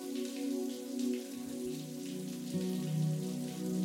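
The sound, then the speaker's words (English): Water from a shower pours in a steady, dense hiss, a continuous spray spattering onto a surface with slight swells in loudness and a low, even rumble beneath. No one speaks. “And when the water is ready, take a deep breath and step fully into the path of the water.”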